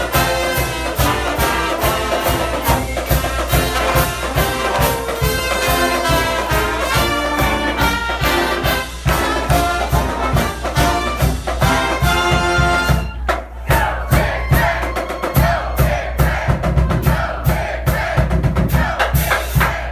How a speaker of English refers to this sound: Pep band getting things going at Misty's in downtown Lincoln, Nebraska